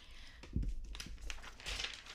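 Close, crisp rustling of paper pages being turned, a few quick swishes and crinkles in a row, with no voices.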